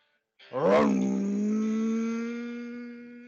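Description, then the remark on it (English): A motorbike ridden by a woman at full speed revs hard, surging up in pitch and then holding a loud, steady, buzzing drone for a few seconds. It is prominent, with no talking. “And we see in the distance a motorbike with a lady on it.”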